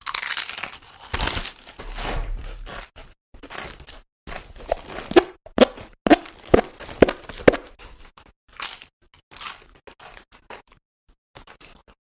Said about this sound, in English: I couldn't even hear you over the sound of these chips.